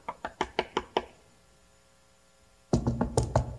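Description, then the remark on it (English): Someone knocks on a hotel room door in a quick, even run of about six sharp raps. After a short silence, a louder, denser burst of knocking and clatter follows. “And then we got a knock on the door.”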